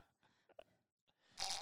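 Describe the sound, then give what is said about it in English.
A drink gurgling through a straw: a few short, sputtering bubbly bursts, a brief pause, then a louder, harsh rasping slurp to finish. No one talks. “That sounded like a gurgling fart. It wasn't. It was that my, was her drink. It was my cup, my straw.”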